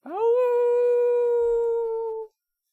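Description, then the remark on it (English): A single long howl, voiced by a person as the furred character Roland after tearing into a snake's back, swoops up in pitch and then holds a loud, steady, tonal note for about two seconds before cutting off abruptly, with nothing else around it. “And in one last coup de grace, Roland takes a giant bite and tears the life and cords from the back of the snake and howls.”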